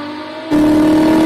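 car engine revving

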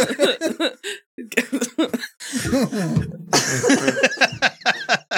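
coughing fit

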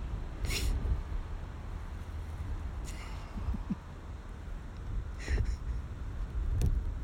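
road traffic passing

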